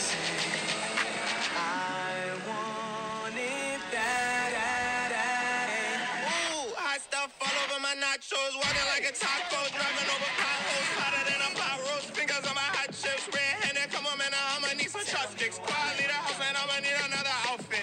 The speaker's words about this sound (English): Flamin' Hot Nacho. They made the original hot. There you go. So he's in a pink car now. Here comes the rap.